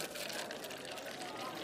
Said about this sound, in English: I'm gonna have a green tea, but you're welcome to order whatever you want. So go ahead and get it in your head what you want, and the waiter's gonna pour our drinks for us.